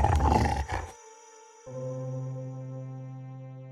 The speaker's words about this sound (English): Soon, it reached for his battle axe and began a low growling snarl at the prospect of some excitement.